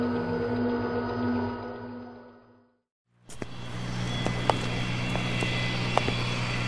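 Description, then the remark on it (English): A steady, droning roar of a company jet's engine in flight on the way to Warsaw, cutting out briefly for a moment of silence before resuming as a continuous, even hum with a few faint clicks. “I'm glad we have the company jet available to us.”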